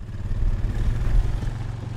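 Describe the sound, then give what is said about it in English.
A boat motor drones steadily, a loud, throbbing low engine hum that holds constant throughout with no voices, as the boat travels by river to Napakiak, a village in western Alaska. “So we traveled to Napakiak by boat, and once Napakiak came into view, I started thinking, are buildings supposed to be that close to the water?”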